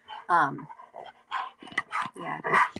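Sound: dog panting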